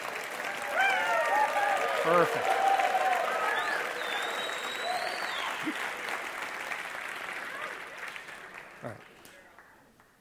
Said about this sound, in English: And he came out all the way from Australia for that little applause. Thank you. Or Austria, sorry.